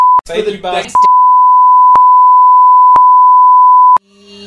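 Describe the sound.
A person vocally imitates a long, steady, high-pitched beep that holds for nearly four seconds, loud and unwavering, with faint ticks about once a second. A brief burst of talk overlaps its start.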